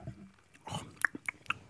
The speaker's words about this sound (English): Oh, I'm going to chew when music's playing.